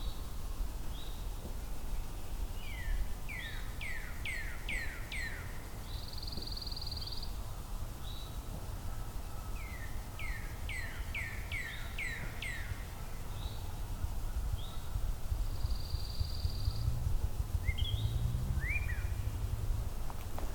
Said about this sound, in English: Still in the background, northern cardinal, pine warbler, eastern towhee. It's a busy soundscape.